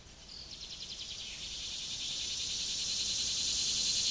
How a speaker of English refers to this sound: For many, a chorus of insects is the most reliable sign of summer. You could almost keep the time by the tune of their unique songs.